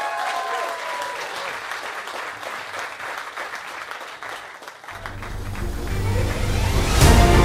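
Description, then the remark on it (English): A large crowd claps and cheers steadily, the applause dense and continuous, swelling louder toward the end with a rumbling low roar beneath it. “Do you want to give Katie another cheer there?”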